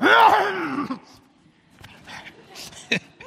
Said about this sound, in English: Okay, I'm going to clear my throat. Apologize.